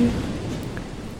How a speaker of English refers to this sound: Listen to the waves.